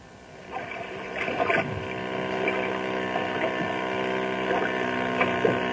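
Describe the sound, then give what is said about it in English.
Speedboats on Beaver Lake, a clear lake ringed by mountains: a steady engine roar with strong harmonic drone, rising and falling in pitch as the boats pass, loud, with water churning underneath and no talking. “Water hot rods.”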